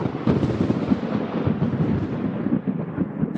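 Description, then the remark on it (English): A loud, sustained thunder sound effect, crackling and rolling with dense low booms for several seconds before cutting off abruptly. “I mean, we even have lightning.”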